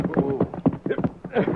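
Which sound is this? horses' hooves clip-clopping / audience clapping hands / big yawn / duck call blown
horses' hooves clip-clopping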